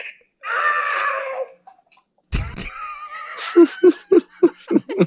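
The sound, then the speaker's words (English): A Bop It toy's electronic scream sound effect, played when a player fails, wails for about a second, bright and harmonic, then a sharp clatter is followed by bursts of rhythmic laughter. “It screams in pain when you fuck up.”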